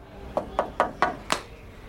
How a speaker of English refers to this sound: Sister Pete knocks on the door of his office, and she's able to provide an update as to Diane's whereabouts.